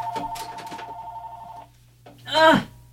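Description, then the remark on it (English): A landline telephone, located behind a TV, rings with a steady, buzzy electronic trill for about a second and a half, then stops; a brief voice follows after a short pause. “What is my landline ringing for?”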